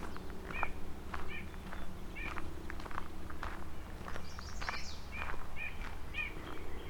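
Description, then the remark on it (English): Birdsong outdoors at Courtcliffe Park near Carlisle early in the morning, while crossing Bronte Creek at a narrow spot: a yellow warbler's bright chirpy phrases and the nasal calls of several white-breasted nuthatches repeat, with footsteps and a steady low background rumble underneath. “That yellow warbler, white-breast nuthatch.”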